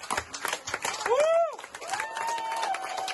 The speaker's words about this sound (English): As ABS-CBN signed off, cheers erupted in the newsroom. Grief-stricken An applause was the only thing they could muster. The health crisis still preventing them from hugging each other.